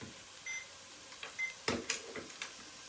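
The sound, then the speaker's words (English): A kitchen timer gives a couple of short, faint electronic beeps, followed by several quick clicks and clatters as it is switched off while cooking at a stove. No one speaks. “The reason I've done that, and I'm just going to turn off the timer.”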